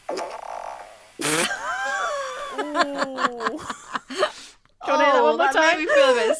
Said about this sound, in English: Okay. So, anonymous fart incoming. Okay.